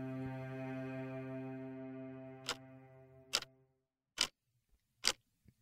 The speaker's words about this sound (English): His alarm clock ticked loudly on the nightstand. In the darkness, he could just make out the hands.